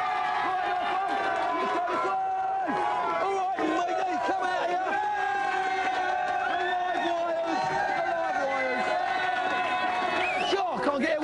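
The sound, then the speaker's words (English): A crowd cheers loudly and continuously for a team called the Nightmares, a dense wash of overlapping voices with shouts and whoops rising over it, sustained at steady volume for about eleven seconds. “Give them a big cheer.”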